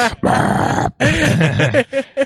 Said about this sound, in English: Let's try that again. If you belch. Yeah. I could have done it louder, I suppose.